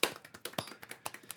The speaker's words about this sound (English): Keep clapping while I'm looking for it. I'm just clapping.